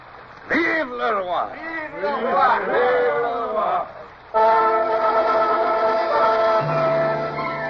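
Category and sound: crowd, crowd cheering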